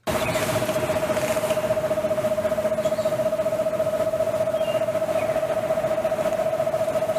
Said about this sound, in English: Next, we have the eastern screech owl.